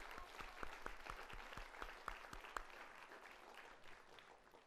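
A crowd claps together in sustained applause, many hands forming a dense, crackling wash with a few sharp individual claps standing out, holding steady before tapering slightly toward the end.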